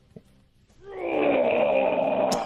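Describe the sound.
A person's voice imitates a grizzly bear roar: one long, growling, rumbling bellow rising sharply after a brief pause and holding loud and steady for about a second and a half.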